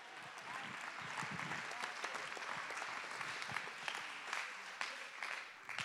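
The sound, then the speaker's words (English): An audience claps their hands in praise to God in sustained, dense applause, a steady wash of many overlapping claps with occasional sharper cracks standing out, fairly loud throughout. “Clap your hands and lift your voice and give God the praise.”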